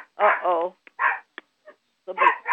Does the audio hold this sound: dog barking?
yes